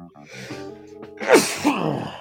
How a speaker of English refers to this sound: Bless you.